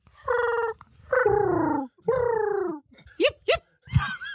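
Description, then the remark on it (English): A pet pigeon named Valhalla coos in three drawn-out, throaty notes that each slide downward in pitch, followed by a few quicker, sharper chirps. The calls are fairly loud, with short pauses between them. “Very dumb pigeon.”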